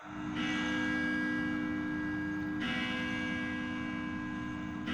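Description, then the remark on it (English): Church bells ring out loudly, two heavy strikes about two seconds apart, each leaving a rich, sustained metallic hum that fills the space between them. No one speaks. “There ought to be a law against those bells.”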